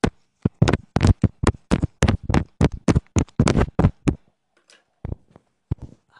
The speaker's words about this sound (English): Table tap.